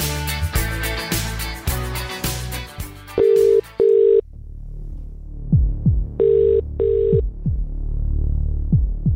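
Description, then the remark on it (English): An outgoing telephone call's ringing tone, as radio hosts from The Rock call a listener, sounds twice, each a quick pair of steady buzzing pulses, over a thumping music bed with a deep, throbbing beat. “then you could well be getting a phone call from the fellas now.”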